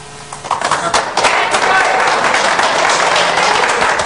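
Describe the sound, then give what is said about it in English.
An audience breaks into applause, dense rapid clapping that swells after the first second and holds steady and loud, with crowd voices mixed into the noise. “Okay, how many of you would take the red pill and go for it? By round of applause.”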